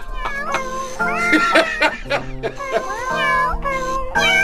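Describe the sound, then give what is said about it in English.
A person imitates a cat, letting out a rapid string of loud meows with bending, whiny pitch, one after another with barely a pause between them. “And do your version now. Leaning over. Meow, meow, meow, meow, meow, meow.”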